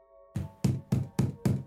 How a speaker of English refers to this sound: This time, the knocking was loud enough to rattle the door.